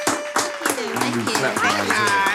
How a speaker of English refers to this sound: Everybody clap it up for Sex and Friends Podcast in the building.